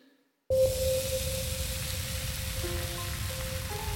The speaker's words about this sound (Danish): Jacob ruder lidt med løgene, der steger.